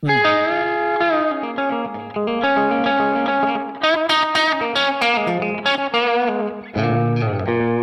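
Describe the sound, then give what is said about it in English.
An electric guitar plays a loud, steady run of sustained chords and notes through a slapback delay, each note trailed by a quick repeat, with a dulled, muffled top end. “When you have that fidelity loss, essentially, the high-end loss, mm-hmm.”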